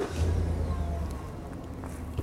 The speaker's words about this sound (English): There's a house across the street from mine in the city of Rhinelander. Starting a few days ago, car after car began coming by, visitors wanting to see inside.